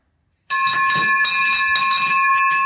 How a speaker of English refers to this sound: Hold on. Victory bell number two.